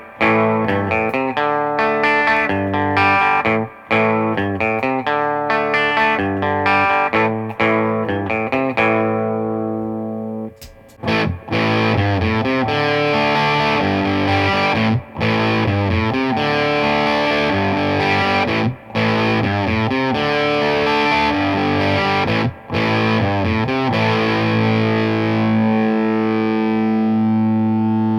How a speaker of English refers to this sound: I'm going to play with a Strat into a Vox AC15 and use the BC108 to hear what kind of tones I could get with that combination.